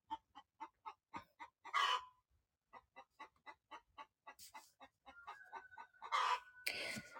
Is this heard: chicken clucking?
yes